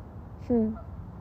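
A single short honk from a gaggle of geese on their way over rings out over a low background hum, nasal and slightly falling in pitch, lasting about a quarter second with no other calls around it.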